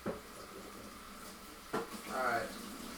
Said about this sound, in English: Oh. Fork's dirty. Gotta wash one.